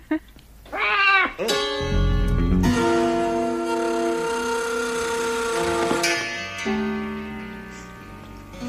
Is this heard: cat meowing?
yes